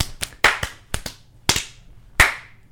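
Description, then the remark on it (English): About eight sharp, loud smacks of punches landing on faces as people punch each other in the face, struck in an uneven rhythm with short pauses between bursts. Each hit is a crisp, slapping crack, with no voices. “Why are you guys punching each other in the face?”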